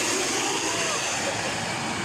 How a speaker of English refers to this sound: Air tractors were skimming Otter Lake.